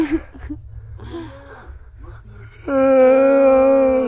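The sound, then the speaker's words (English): A person stretching takes a few short breaths and makes a softer rising vocal sound, then lets out a long, loud, strained yawn that groans steadily to the end. “I'm stretching. I'm yawning.”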